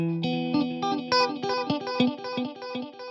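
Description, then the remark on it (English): A clean electric guitar with no effects, distortion, reverb or delay plays a quick run of picked notes and chord tones, bright, with sharp attacks ringing into one another in a steady rhythm, no voices. “I just want to hear the naked, unadorned tone of the guitar.”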